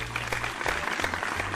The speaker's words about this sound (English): Insert clapping soundtrack.